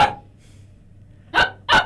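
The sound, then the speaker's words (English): A dog barks in short, sharp bursts: one trailing off at the start, then two quick barks close together after a brief pause, clear over a low background hum. “We'll deal with the dog during the talk break.”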